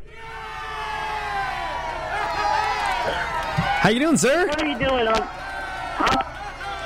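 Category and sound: crowd, crowd cheering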